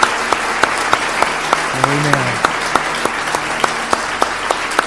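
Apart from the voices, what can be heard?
audience hand clapping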